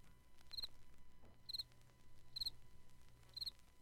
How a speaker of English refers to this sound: How wonderful are the rhythms of the world. The birds. The rippling brook. The chirp of a cricket.